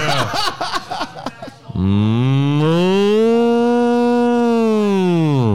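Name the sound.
cow mooing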